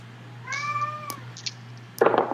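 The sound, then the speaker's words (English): A cat named Zuko lets out a single drawn-out, high wailing yowl, almost like a crying baby, over a steady low hum, followed by a short, harsh noisy burst. “That it's is Zuko screaming.”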